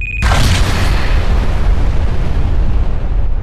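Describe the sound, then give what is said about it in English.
A loud cinematic explosion bursts in abruptly, a deep booming blast with heavy low-end rumble that sustains and slowly decays over a few seconds, heard alone without any talking. “So I think a cinematic explosion is entirely called for here.”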